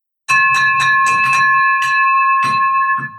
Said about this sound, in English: There's the victory bell, my man. And you have that ring for you.